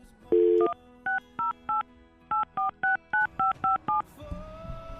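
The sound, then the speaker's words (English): A short dial tone, then a quick series of about ten telephone keypad beeps as a phone call is dialed, two-tone and evenly spaced, with a brief pause after the first three. Clear, with no talking. “All right, let's make a phone call.”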